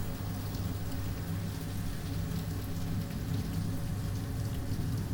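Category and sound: nature, thunderstorm rain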